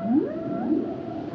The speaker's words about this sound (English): Whale song, John. Isn't it relaxing? I bought these CDs off Amazon.